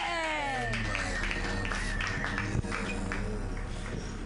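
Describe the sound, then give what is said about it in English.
An audience claps steadily for a few seconds, a dense wash of hand claps with scattered whoops and voices mixed in, staying fairly loud throughout. The applause greets a comedian as he is introduced to tell his jokes. “Just clap, you guys.”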